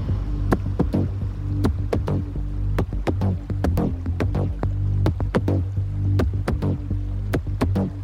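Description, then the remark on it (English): Water sloshes and drips as it rises up the windows of a submerged car, with sharp, irregular plinks and gurgles over a steady low rumble, fairly loud, with no voices. “the water begins submerging her vehicle, slowly rising up her windows, rapidly diminishing any chance of her safe escape.”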